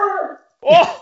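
A dog lets out two short, tonal howling cries separated by a brief pause, the second rising and more strained, fairly loud.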